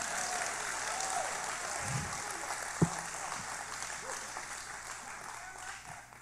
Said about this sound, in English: Hallelujah. This is where God's wanting to lead the church right now. Can y'all give Jesus a hand clap right now?